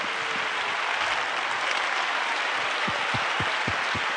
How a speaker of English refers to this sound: Because nobody in here's got it together. And all the honest people are clapping.